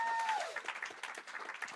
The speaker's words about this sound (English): How about a round of applause for our preacher?